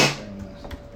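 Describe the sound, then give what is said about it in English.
A single quick sneeze bursts out at the start, sharp and breathy, then fades into a quiet background with a faint steady hum. “Bless you.”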